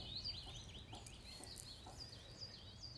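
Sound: bird song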